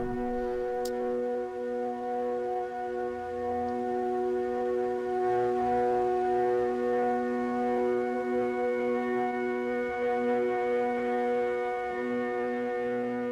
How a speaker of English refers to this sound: So number 7, if I'm not mistaken, is the one where you play two notes with the interval of a perfect fifth and let that go for and just let that play for until it goes out.